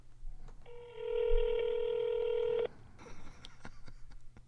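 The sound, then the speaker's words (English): A telephone keypad tone rings out as one steady electronic beep held for about two seconds, followed by a few faint clicks and some low background noise. No one speaks. “Yeah, you want to hang up and call back?”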